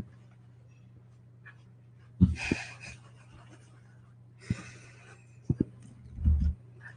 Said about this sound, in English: Roger, why are you crying? My dog's crying right now.